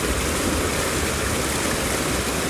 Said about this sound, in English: So much water, so much power.